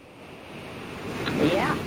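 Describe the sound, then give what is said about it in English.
A steady roar of surf swells louder over a couple of seconds, like waves rushing in, with a faint voice briefly rising beneath the noise. “It sounds like you're getting carried out to sea.”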